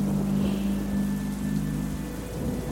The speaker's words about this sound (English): There's the motorcycle again.